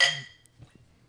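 A single bright clink of glasses touching in a toast, ringing briefly and fading quickly into near silence with faint low background rumble.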